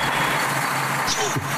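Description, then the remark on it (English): A bus engine, with Representative Ann Williams driving and pumping the gas, roars loudly with a rough, steady low rumble, and its pitch briefly swells and dips once toward the end as the gas is pumped. “Okay, you got to pump on the gas. Pump on the gas.”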